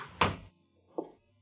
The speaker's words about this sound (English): Close the door.